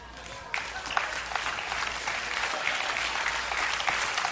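An audience bursts into steady applause, a dense rush of many hands clapping that starts suddenly after a brief lull and holds at an even, fairly loud level.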